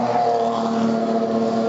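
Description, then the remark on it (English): About 10 to 12 race cars idle outside their pit garages while their teams fine-tune them ahead of the race, a steady, continuous droning hum with a low buzzing tone, holding an even level throughout with no voices. “But there's something like 10, 12 cars here at the moment, all vying for their position outside their garage and using that opportunity just to fine-tune.”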